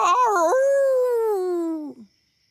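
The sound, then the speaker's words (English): A person's voice imitates a wolf howl: one sustained, wavering cry that rises briefly, holds a long drawn-out tone, then slides down and fades out, loud, with no other sounds. “Are you howling at me?”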